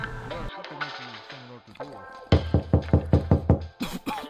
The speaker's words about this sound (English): Now, oh my God, I think I hear somebody at the door.